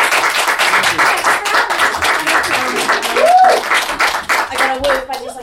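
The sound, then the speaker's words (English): A crowd claps steadily and loudly for several seconds, with a rising and falling 'woo' cheer soaring over the applause midway and a few more shouts before the clapping thins out, as a vote in a costume competition at a live show. “Big number of clap and woo.”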